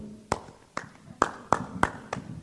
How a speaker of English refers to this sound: Who has tambourines in our hand? Oh, we have one person there. Yes, we have a tambourine.